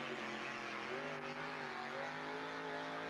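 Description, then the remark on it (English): A two-wheel drive pickup truck's engine roars loudly and steadily under hard load during a truck pull in Wenatchee, on about its third or fourth pass, its pitch wavering slightly as it strains, continuous for the whole stretch with no talking. “That was about the third or fourth pass on that truck.”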